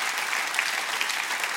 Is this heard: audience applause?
yes